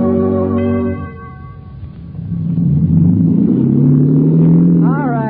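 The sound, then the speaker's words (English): A steady, sustained chord fades into a low, churning boat engine drone that rumbles on evenly for several seconds, ending with a brief rising whine. “Stop the engine.”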